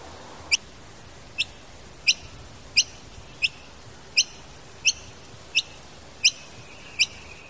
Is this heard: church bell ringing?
no